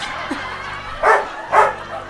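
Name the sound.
dog barking excitedly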